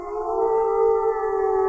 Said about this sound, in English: Yeah, I believe I hear another wolf howling. I think we got another intrigue right now. I really do.